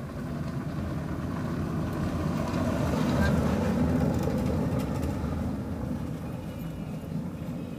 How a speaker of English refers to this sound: Comes another car.